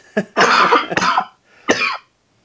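A man coughs in a quick cluster of harsh, throaty bursts, then one more cough after a short pause. Close and fairly loud, with no talking.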